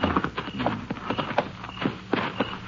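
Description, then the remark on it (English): Horses' hooves clip-clop at an uneven walking pace, a string of sharp knocking steps, with no voices over them. “Better tie the horses to that mesquite.”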